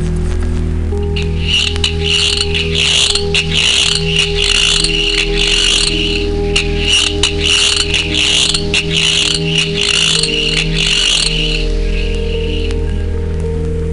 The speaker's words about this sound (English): Its strange ears in the front legs are capable of hearing much higher frequencies than our ears can. By slowing the speed of the cricket's song, we begin to hear some of these sounds.